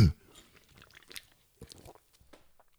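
A brief thump at the start, then someone sipping beer, with quiet wet mouth clicks and swallowing sounds spread over a few seconds, no talking.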